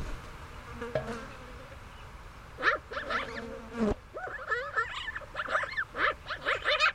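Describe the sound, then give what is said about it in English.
Insects buzz steadily throughout around a bison carcass, a droning hum, while magpies chirp and chatter harshly and swoop overhead, breaking in repeatedly over the top, with no one speaking. “Insects buzz around, magpies chirp and swoop overhead.”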